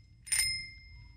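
A single bright quiz ring-in ding from a contestant ringing in to name a 1995 movie during a Throwback Live quiz round strikes sharply, its high metallic tones lingering and fading over about a second above a faint low hum. No one speaks.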